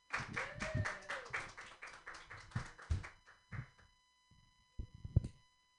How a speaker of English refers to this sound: Keep your hands clapping